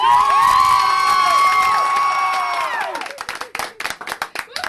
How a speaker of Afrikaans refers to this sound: Oké, okay, gaan nou uit, julle skree.